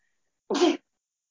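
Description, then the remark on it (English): A single short, sharp sneeze bursts out, lasting about a third of a second amid otherwise quiet surroundings. “Bless you.”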